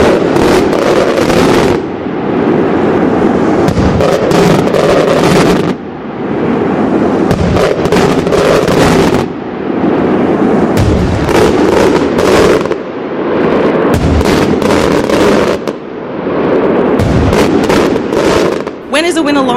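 Fireworks burst continuously in a dense, crackling barrage, with sharp bangs and pops layered over a constant roar of smaller explosions, loud throughout.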